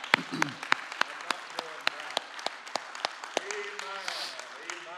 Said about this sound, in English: Let's clap our hands this morning.